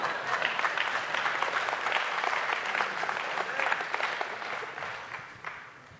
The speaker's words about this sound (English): You could keep clapping.